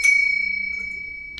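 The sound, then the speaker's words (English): A single bright bell strike, rung to open the show's Kowalski Analysis Report segment, rings out with a clear, high sustained tone that slowly fades, followed by a faint second tap near the end. No voices. “Kowalski, ring that bell. Ring that bell, brother.”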